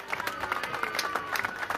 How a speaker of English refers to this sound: …, ladies and gentlemen. Give them a huge round of applause as they go off.